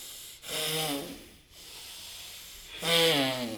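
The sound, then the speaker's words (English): Long, steady hissing breaths drawn through the nostrils, two strong airy rushes separated by a softer stretch, each carrying a faint humming, tonal edge. “So just breathe long in the hissing breath through the nostrils.”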